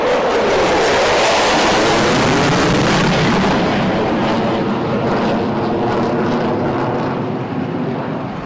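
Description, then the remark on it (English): Race car engines roar to life together after Trump gives the start-your-engines command before a 500-mile race for the Harley J. Earl Trophy, a loud, dense, sustained rumble with a throaty droning pitch that holds steady for several seconds before easing slightly. No voices are heard. “After the engines were started, Trump got into the Beast.”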